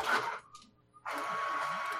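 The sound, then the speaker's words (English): An old printer prints a page sent using LPR, whirring and clattering as it feeds the page: a loud mechanical burst, a brief pause with a faint click, then steady grinding motion resumes. “Oh my gosh, I just printed something on my own printer.”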